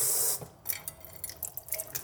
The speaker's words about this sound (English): Fill up my water bottle with water.